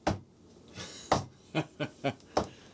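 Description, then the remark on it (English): A series of sharp knocks, about seven in all, in an uneven rhythm, fairly loud, imitating someone banging hard on a door. No one speaks. “I thought when you guys left something, it was banging at the door.”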